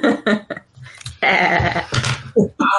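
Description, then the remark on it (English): A person makes a strange, wavering sheep-like bleat with their voice, a sustained nasal cry in the middle of short bursts of vocal noise, fairly loud. “That's a weird sheep noise you just made.”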